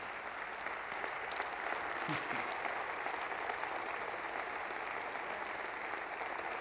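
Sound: audience applause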